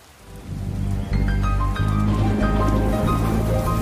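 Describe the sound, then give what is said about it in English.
Rain swells in within the first half-second and then pours down steadily and loudly, a dense hiss of falling water with faint musical tones sounding underneath. No one speaks. “Soggy Sig picked up his shovel just as it started to rain.”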